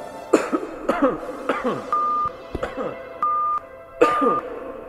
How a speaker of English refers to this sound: I just got a cough real quick. Okay. It's not a sick cough, though. I don't have COVID.